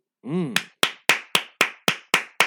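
A short voiced whoop rises and falls, then a woman claps her hands eight times in agreement, in a steady, brisk rhythm, each clap sharp and crisp with a quick decay.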